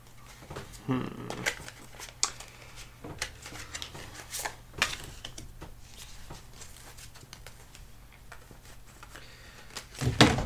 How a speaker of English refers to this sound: If any cards jump out, put them aside. Or seem like they don't want to go in the deck when you're shuffling. Feel free to twist and turn as you feel fit.